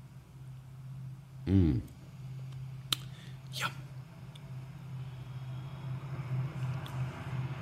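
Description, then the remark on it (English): A passing train, on a railway track that runs past a college, gives off a steady low rumble and drone that fills the whole stretch, with a brief voice and a few small clicks and clinks on top. “Let me have a sip of my beer while the train passes.”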